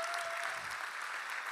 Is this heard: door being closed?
no